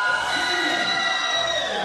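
A PCA indie wrestling crowd cheers steadily, firmly behind the faction Federated, a dense, loud roar of many voices with sustained whoops and shouts holding a high, bright tone throughout.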